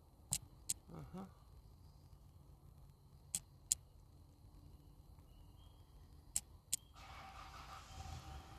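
Sharp, crisp taps come in three evenly spaced pairs, a double knock roughly every three seconds, clear against a quiet low rumble outdoors, with a soft hiss rising near the end.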